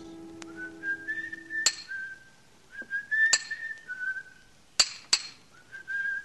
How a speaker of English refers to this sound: From the yard itself came a cheery whistle, the noise of hammer blows, and the cold sound of steel meeting stone.